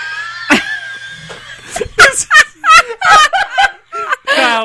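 A chicken clucks close by in a quick, uneven string of short, throaty notes, preceded by a drawn-out squawk, fairly loud and with no talking over it.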